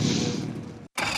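boat engine starting up

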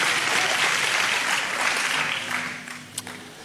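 audience clapping

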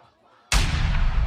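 gunshot sound effect

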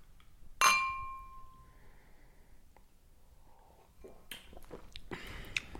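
beer glasses clinking

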